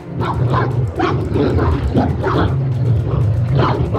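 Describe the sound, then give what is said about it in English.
A beast snarls and barks viciously, loud, rough bursts coming every half second or so over a constant low growling rumble, as it pounces on a woman just before she reaches the ladder of a water tower and bears her down. “The beast pounces just before she reaches the ladder, bearing her down.”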